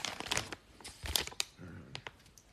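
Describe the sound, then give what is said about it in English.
Crisp crinkling of plastic packaging being handled and cut open with scissors for ASMR, coming in irregular bursts of rustles and crackles with brief pauses between, and no voices. “But I have some scissors here. I'm going to cut these open so they're not too loud.”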